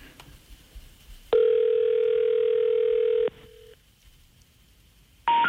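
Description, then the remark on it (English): A telephone ringback tone on the line after dialing a phone number: one loud, steady electronic buzz lasting about two seconds, then a quiet pause before another tone begins at the very end. No one speaks. “It's ringing.”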